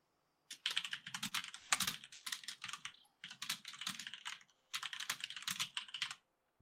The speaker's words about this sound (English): Dude, that sounds like a perfect keyboard, man. Oh, man. Why it is, it's nice and clicky.